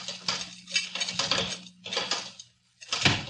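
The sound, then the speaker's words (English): A door being opened: several bursts of metallic rattling and clanking from the latch and hinges, a brief pause, then a final sharper clack, over a low steady hum. “Open the door, Kino. Okay, here comes the boss.”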